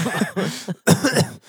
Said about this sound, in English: I have this weird cough.